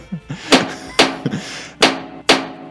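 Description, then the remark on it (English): A trash can bangs loudly several times in an uneven rhythm, four sharp crashing hits with a brief rattle after each, mixed with a few softer thumps in between. “Well, it seems like we're getting a trash can banging sound from our dugout.”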